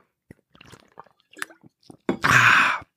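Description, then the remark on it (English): Wet mouth sounds of someone sipping and swallowing water, a few small slurps and gulps, then a louder breathy rush of air at the end. “Water. Sorry guys. Feels great on my sore throat.”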